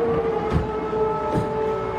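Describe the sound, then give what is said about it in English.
An air raid siren holds a steady, droning tone, fairly loud and continuous, with a couple of brief low rumbling bursts beneath it and no voices. “Then the sirens go off.”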